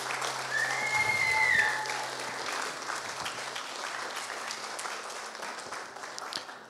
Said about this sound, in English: Mothers, you are wonderful. Can we give a round of applause for everybody's mom? Come on.